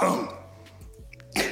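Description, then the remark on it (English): A raspy throat-clearing cough: a rough burst, a brief low rumbling pause, then another harsh clearing of the throat at the end. “Before you start coughing, can I get my props for the Trae Young?”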